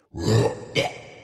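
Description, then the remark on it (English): Someone coughing up a sticky purple furball: a low, throaty retch followed by a shorter, sharper hacking burst, fairly loud, with no talking. “Suddenly, a sticky purple furball bounced off of Finn's visor.”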